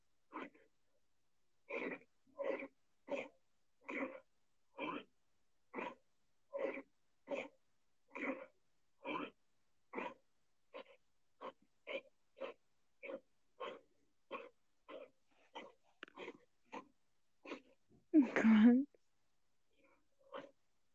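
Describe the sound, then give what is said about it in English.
A long run of short, raspy wheezing breaths or coughs repeats in a steady rhythm, fairly loud, ending with a harsher, louder burst near the end. “They breathe weird.”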